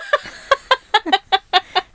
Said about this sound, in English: Anyone hear the ducks?